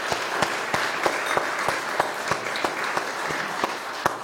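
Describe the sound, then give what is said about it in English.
An audience applauds its young people at a Christmas program, steadily, a dense wash of many hands clapping at a fairly loud, even level, with a few sharper individual claps standing out at regular intervals throughout. “Let's give our young people another round of applause.”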